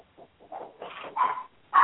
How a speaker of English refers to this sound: Unless he's yelping something to us. I don't speak Chihuahua.